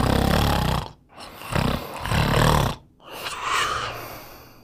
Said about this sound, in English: Saying goodnight to your family, you slowly drift off into a restful night's sleep. And then you begin to snore, super loudly.